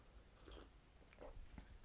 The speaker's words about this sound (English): Just need to have a sip of my tea.